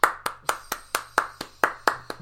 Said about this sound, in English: Oh, you're clapping? Or is that the audience clapping? That, I think that might have been somebody in the back. One guy. Or woman.